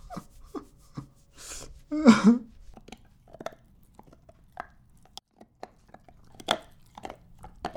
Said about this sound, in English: He's chewing on a nylon bone. He is a light cream golden retriever.